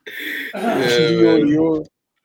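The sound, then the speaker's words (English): Someone loudly clears phlegm from their throat: a short raspy burst, then a longer gravelly, voiced hack lasting about a second and a half before stopping abruptly. “I was trying not to cough up. I felt like I had phlegm in my.”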